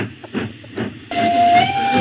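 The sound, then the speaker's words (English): A steam train whistle sounds as the train approaches, a steady sustained tone after a few puffs of chugging, with loud hissing steam underneath; no one speaks. “And we hear the train coming.”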